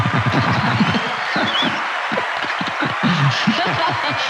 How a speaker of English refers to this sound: I actually just want to give you a round of applause